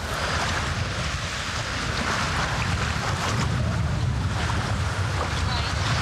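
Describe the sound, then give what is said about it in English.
Steady wash of lake waves lapping at a beach shoreline, blended with gusty wind buffeting the microphone, forming a continuous, fairly loud outdoor roar with no distinct breaks. “Oh, let's check the water out. Oh my god, it's so nice.”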